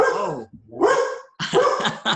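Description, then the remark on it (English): Barzell, a dog known as the hockey dog, barks loudly, a drawn-out bark followed by a quick cluster of sharp, excited barks, with a brief pause between the bursts. “That's Barzell, the hockey dog.”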